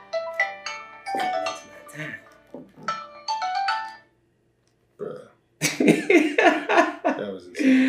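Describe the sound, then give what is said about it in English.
A loud electronic alert tone from a phone app for finding lost keys plays a repeating, melodic pattern of chirpy beeps for several seconds and will not switch off, then breaks off and people start talking and laughing. “But look, you see, it won't go off now.”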